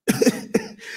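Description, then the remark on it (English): A man coughs twice in quick succession, fairly loud, the harsh bursts separated by a brief pause, followed by a rough breathy exhale. “Got me coughing over here like I'm smoking weed.”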